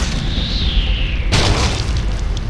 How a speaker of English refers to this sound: A hunk of cement the size of a bowling ball drops from above.